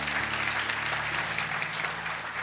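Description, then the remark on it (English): An audience claps together in steady, dense applause, the many hands blending into a continuous crackling wash that holds at an even level throughout, with a faint low hum underneath. “So while you're clapping, what I want to say is congratulations on making good investments for yourself, okay?”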